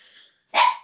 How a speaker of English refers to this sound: My dog has heard another dog barking, so it's woken him up and gone mad.